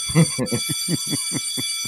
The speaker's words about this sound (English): It's a long school bell, Professor. All right, we don't want to waste any time with any silly sound effects or anything like that.